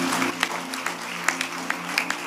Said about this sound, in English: Give the Lord a clap of it.